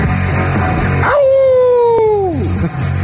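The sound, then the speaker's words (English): In a sports radio studio in Arizona, a person gives a single loud, drawn-out wolf howl imitation, a sustained tone that swells in, holds steady for over a second, then slides downward and fades, following a brief stretch of busy background sound. “I figure I'd give a wolf call.”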